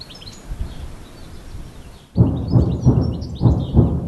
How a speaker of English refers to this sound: After a brief lull, it sounds like the bombardments are starting to pick up again, interrupting the spring bird song here.